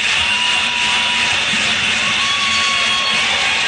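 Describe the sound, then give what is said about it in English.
A dense, steady roar of a large crowd fills the whole stretch, loud and continuous like sustained cheering, with no individual voices standing out. “Listen to the crowd.”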